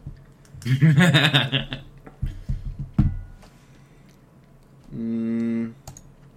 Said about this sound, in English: I can hear him typing. That's looking, yeah. He's looking.